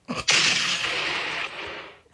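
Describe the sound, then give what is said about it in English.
A quiz buzzer sounds: a short thump, then a loud, harsh, hissing blast that holds steady for nearly two seconds before cutting off. No one speaks. “You'll know who it is by the sounds of their buzzer.”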